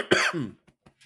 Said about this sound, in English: Girl, remember you can mute yourself when you have to cough.